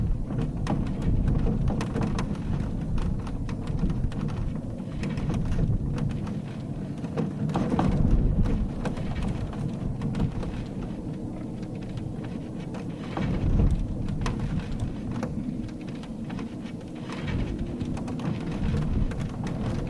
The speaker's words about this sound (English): Like an old chest in a reclining chair that Scott Smallwood found squeaking and rattling in a heavy wind blowing through the Great Salt Lake Desert in Utah.